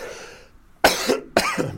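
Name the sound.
coughing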